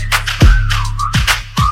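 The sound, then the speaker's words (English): A sliding, tuneful human whistle rises and falls over a music track, with deep booming bass kicks hitting about three times underneath and bright hi-hat-like hiss. “Cause damn, that ass fat, had to whistle like.”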